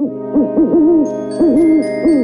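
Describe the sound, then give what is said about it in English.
An owl hoots in two loud phrases, each a quick pair of short hoots followed by a longer, wavering one, heard clearly on its own with no talking. “No, it is owl time.”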